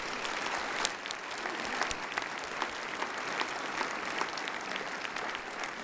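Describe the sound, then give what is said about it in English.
A large audience at Church of the Palms applauds steadily, a dense wash of many hands clapping at once that holds an even level throughout, with no voices standing out above it. “George, give him a round of applause.”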